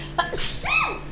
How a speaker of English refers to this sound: Excuse me. Bless you.